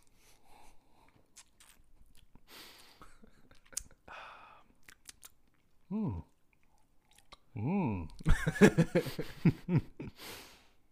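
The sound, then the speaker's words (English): Quiet mouth sounds of someone taking three sips of Object Permanence, a Kane Brewing barley wine beer of 13.3% alcohol: small slurps and swallows, a few throaty hums, then a louder burst of breathy, gulping noises near the end. “All right, let's try this beer just because.”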